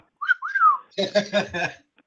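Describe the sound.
A clear whistle of two sliding notes, then four quick rhythmic vocal bursts, someone mimicking a little bells-and-whistles sound-effect fanfare with their mouth.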